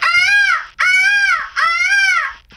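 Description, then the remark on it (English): A girl's voice imitates a peacock call: three loud, shrill, wailing cries in quick succession, each rising then falling in pitch, clear with no talking. “Peacock.”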